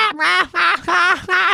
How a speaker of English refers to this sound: They just laugh. And I'm not joking. It's like, ha, ha, ha, ha, ha, ha, ha, ha, ha. I'm like, I'm shouting at seagulls. I'm like, shut the fuck up! And then you can hear loads of them laughing back.